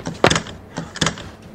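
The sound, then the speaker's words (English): Someone tries the handle of a locked train door: a few sharp metallic clunks and rattles in quick succession, with no voices. “Ugh, all the doors on this side are locked.”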